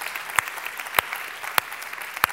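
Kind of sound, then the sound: crowd, crowd cheering and applause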